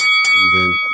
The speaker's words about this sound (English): Go to the neutral corner for a second. All right. Wait for the bell to ring.